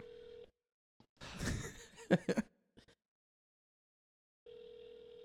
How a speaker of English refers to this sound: He's not gonna answer. Of course not. He knows what's up. He knows. No, too much. You know what? He's too punk rock. He won't answer the phone.